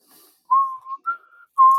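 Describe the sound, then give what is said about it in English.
Someone whistles a short, wavering tune, three sustained notes with brief gaps between them, slightly off pitch and unsteady, with no talking. “No, I thoroughly enjoyed it, the off-tune whistling.”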